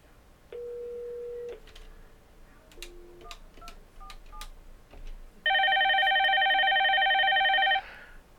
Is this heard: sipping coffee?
no